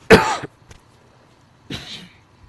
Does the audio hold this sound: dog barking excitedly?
no